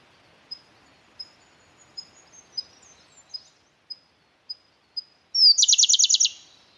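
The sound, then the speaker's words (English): A Siberian blue robin sings alone, opening with a series of thin, high, evenly spaced ticking notes before bursting into a loud, rapid, rattling trill at the end. “The bird song you are listening to is the Siberian blue robin.”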